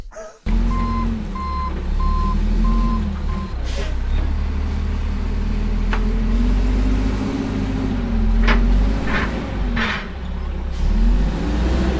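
A truck's reversing alarm beeps steadily, about five evenly spaced tones, over a deep idling engine rumble; the beeping stops and the engine keeps running with a few hissy bursts.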